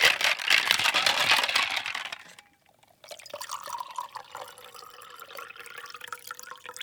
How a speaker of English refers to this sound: I'm trying to get a cheese quietly. There's a crunch. Quietly tries to get a cheese ball out of the bag.